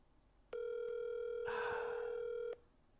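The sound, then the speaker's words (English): An outgoing phone call rings: one steady, mid-pitched ringback tone lasting about two seconds, with a brief burst of rustling noise over its second half before it cuts off. “If he does pick up, watch. Oh, he's on the train. He might not pick up.”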